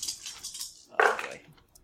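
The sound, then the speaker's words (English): Five dice, three eight-sided and two ten-sided, clatter and rattle in a quick, bright jumble, then a sharp, excited vocal yelp cuts in before the sound fades to quiet. “Okay, so I'm going to roll 5 Woo! Dice right now.”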